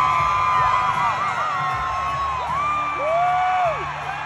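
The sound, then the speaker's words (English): A big concert crowd roars and cheers without letup as a governor appears on stage, with scattered whoops and rising, falling shouts riding over a dense, loud wall of voices. “And did you hear how loud that crowd got?”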